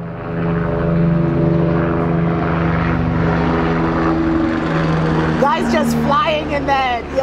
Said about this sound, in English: I'll just let that helicopter go by. Like, really?